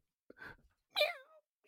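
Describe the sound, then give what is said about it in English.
A short breathy rustle, then a single meow from a Norwegian forest cat that rises briefly and slides down in pitch, fairly quiet and heard on its own with no talking. “Oh, the kitty cat!”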